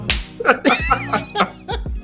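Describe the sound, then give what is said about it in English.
A rapid flurry of sharp, loud slaps as someone slaps people in a hangar, about six or seven smacks in quick irregular succession, mixed with excited voices and laughter. “I'm slapping everybody in this hangar.”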